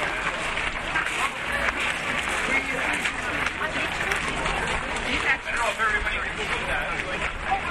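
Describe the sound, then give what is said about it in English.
An audience at an art competition applauds steadily for several seconds as the winning artwork is shown, a dense, even wash of many hands clapping at once, with a murmur of crowd voices mixed underneath. “The frame picture was so small, I think everybody was just clapping just to be nice, because I don't think anybody could see what it was at that distance.”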